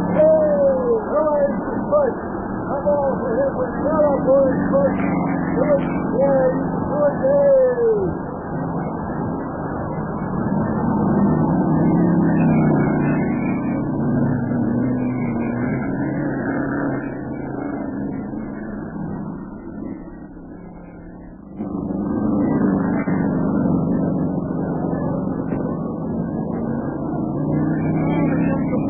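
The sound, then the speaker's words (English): Racing car engines roar in a continuous, dense drone that briefly thins out before surging back, with car number three right behind the leading car. Quick rising whines open the stretch, and voices seem to murmur beneath the noise. “That little fella in car number three is right behind him, and he's a tricky driver.”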